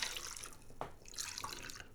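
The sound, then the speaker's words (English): Ginger beer pours into a wide, squat tumbler-style brandy glass over a spherical ice cube, a steady bright liquid splashing with fizzy hiss and a couple of sharp clinks, fairly quiet and with no talking. “So, I've already got the ice in my glass. Going to add some of this ginger.”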